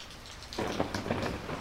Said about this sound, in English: Inside, they could hear the booming of thunder and the pouring sound of rain.